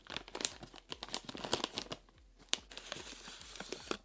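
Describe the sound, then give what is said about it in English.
Continuous crinkling and tearing of a polyfoil pouch of freeze-dried food being opened, with sharp crackles and rips spread across a few seconds and no talking. “then vacuum dried and placed in a special polyfoil pouch.”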